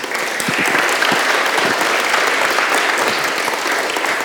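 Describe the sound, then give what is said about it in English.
Steady, sustained applause from a church audience welcoming a man invited up to the front, a dense wash of many hands clapping at a constant, fairly loud level without letting up. “Why don't you give him a round of applause?”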